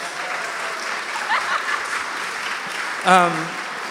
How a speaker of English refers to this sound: So let's give another grace applause or something.